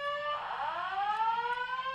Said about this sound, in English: Tone, can you call downstairs and say? Can we stop testing? Yeah, the fire I mean, what alarm? The fuck? There's a fire alarm, Joe.